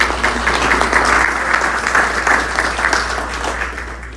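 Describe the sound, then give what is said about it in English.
An audience at a commercial real estate talk gives a round of applause for the staff of RGV Partnership: a dense, even wash of many hands clapping steadily for several seconds with no voices on top, holding at a strong level before easing slightly at the end. “So let's go ahead and give them a round of applause.”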